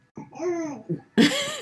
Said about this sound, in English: You guys, I am so sorry. I'm not talking to you, little guy. You cough in my face. He's got reflux, you guys. So he coughed in my face.